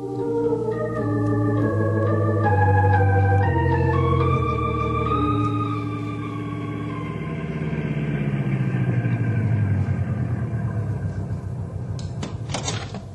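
A car engine drones loudly as the car drives up a road, its pitch climbing in steps as if shifting gears, then winding down into a rougher rumble, with a couple of sharp clunks near the end.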